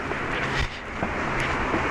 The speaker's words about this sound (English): getting closer to Denman, so the street noise is going to get a little louder.